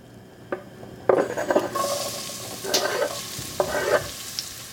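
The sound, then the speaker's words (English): Garlic, ginger and scallions hit hot sesame oil in a pan with a sudden bright sizzle that keeps crackling steadily, punctuated by a few clanks and scrapes as the pan is shaken to sauté them. “And that is a sizzle I want to hear.”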